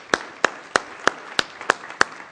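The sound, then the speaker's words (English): Applause from an audience at Church of the Valley, applauding those who serve, comes through as a steady, evenly spaced run of about eight sharp claps, roughly three per second, over a faint background hiss with no talking. “All right, I'd just like to applaud that.”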